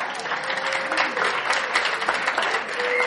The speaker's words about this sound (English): And maybe I'll even come back. They usually don't clap after I speak, so thank you very much.